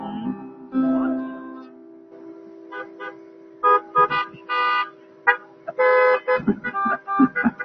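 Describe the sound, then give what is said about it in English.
A car horn honks: first a sustained, steady blare, then a series of short, loud blasts in an uneven rhythm. “I hear that honk.”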